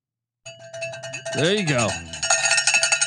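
A cowbell clangs in rapid, repeated metallic strikes with bright ringing overtones, while a voice briefly joins in partway through before the clanging picks back up in a steady, insistent rhythm.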